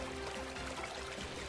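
Steady, continuous rush of the flowing Ngong River in the eastern part of Nairobi, a dense even wash of sound with no pauses, moderately quiet and heard alone without any voices.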